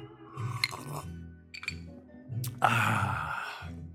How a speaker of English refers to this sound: Another sip of cocktail.